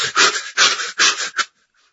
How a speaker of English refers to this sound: There's a form of yogic meditation that does fire breathing, which is just...